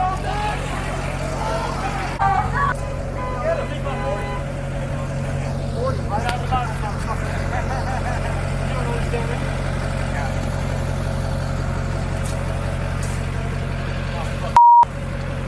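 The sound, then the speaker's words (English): A truck engine idles and rumbles steadily, low and continuous, as it leaves a parking lot while a harassing crowd murmurs and voices chatter around it, with a brief sharp beep near the end. “They're spitting on his truck before he had even left the parking lot.”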